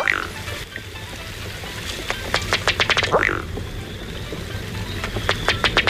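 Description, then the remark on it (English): A Ruddy Duck's display call: a run of dry, ticking taps that quickens into a short belching croak, followed by another burst of rapid ticks, over a soft outdoor background. “Producing 2 web-foot pounds of torque, it's the Ruddy Duck, today's featured feathered friend here on Talkin' Birds.”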